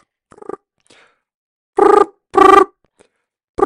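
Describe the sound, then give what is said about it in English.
A phone rings in repeated loud tonal bursts, each about half a second long with short gaps between, as a satellite phone call to someone on Mount Kilimanjaro goes unanswered. A few faint clicks come first, and no one speaks. “So let me just ring him.”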